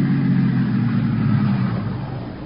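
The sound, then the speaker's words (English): A car engine rumbles steadily outside as the car approaches, a low throaty drone at moderate volume that eases off slightly toward the end, with no voices. “there's a car out there. It's been following me for the last 200 miles.”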